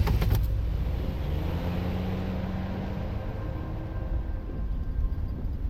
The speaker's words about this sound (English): Detective Blow put Lydia into the back of the police car and pulled out.